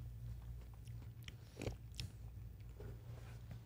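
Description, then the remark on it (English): Someone bites into a piece of fruit and chews, with a few wet, crunchy bursts scattered over a steady low hum. No one speaks. “Eat the whole thing.”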